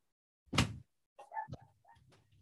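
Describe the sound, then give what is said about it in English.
A door is shut with one loud thud, followed by softer creaking and scraping sounds that fade out over the next second or so. No one speaks. “sorry, my dog keeps barking. I'm gonna shut the door.”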